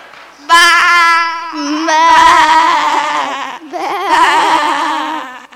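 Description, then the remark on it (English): A human voice mimics a sheep's bleat, three loud, wavering baaing calls in quick succession with a strong nasal vibrato, with no other sounds. “I want to be a sheep too. So do I. Listen, I've even got the accent down.”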